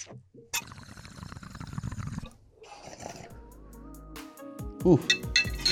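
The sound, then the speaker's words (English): Rough bubbling and gurgling of a little water in a bong during a hit for a couple of seconds, followed by muffled voices and a light clink. “There's not that much water in there. That's how much water I always put in it.”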